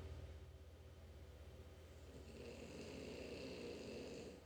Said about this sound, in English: Let's end today with Basil snoring, shall we? All right, moving the mic around. Hold on. Can you hear that?